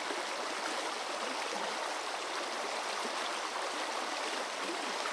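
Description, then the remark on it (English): Steady, continuous rush of flowing river water near the confluence of the Stour and Allen rivers, a broad even hiss with soft burbling, unchanging throughout, with no voices. “I live near to the confluence of two rivers, the Stour and the Allen, which both rise among hills to the north of my home.”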